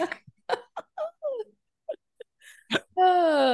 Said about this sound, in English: So if you hear some chomping and There it goes again. Here's some chomping and some meowing in the background. It's just our cat eating.